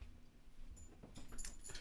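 Collar tags jingle softly in quick, irregular bursts, mixed with faint high dog whimpers. The sounds are quiet, with no talking.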